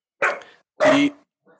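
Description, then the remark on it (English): An animatronic dog named Fluffy on a coaster ride barks twice, loud, each bark short and harsh with a brief pause between, followed by a much fainter, quick yip at the end. “That's actually who's barking right now.”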